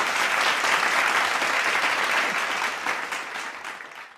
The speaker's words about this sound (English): Clap, clap, clap, clap. Clap.